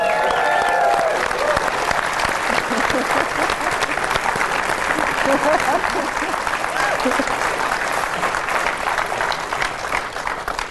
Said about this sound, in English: Oh, now the applause has faded, Jim, before you got your seat. This is really awkward.